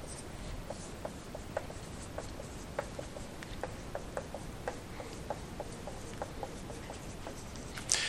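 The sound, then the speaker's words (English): Chalk or marker scratching across a board as a term is written on it, with short, irregular taps and strokes going on steadily, ending in a sharper scrape. “Covenantal gnomism basically teaches what I just wrote up there on the board.”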